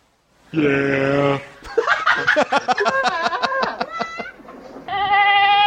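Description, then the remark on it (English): Goats bleat loudly with strangely human-sounding cries: a long wavering call, then a jumble of rapid overlapping bleats, and a final drawn-out one that sounds almost like a person yelling. “All right, so now we're going to take a little break with 30 seconds of... Goats sounding like humans.”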